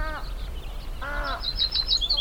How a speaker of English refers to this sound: It's dusk at the Navapatia Field Station, and a cacophony of warblers, willets, and other birds fills the otherwise calm, still evening. Navapatia is a small fishing town on the Quillabampo estuary near the Sonoran border with Sinaloa